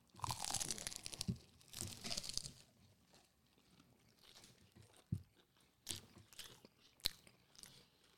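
A loud, crunchy bite into fried chicken, followed by bursts of crisp chewing and a few sharp crackles, with quieter pauses between them and no talking.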